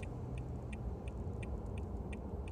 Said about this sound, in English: Hold on, I have to, there's a lot of traffic. I gotta turn right here.